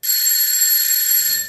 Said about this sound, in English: The doorbell rang. Then the nurse said, "He's the doctor, ma'am. I'll let him in."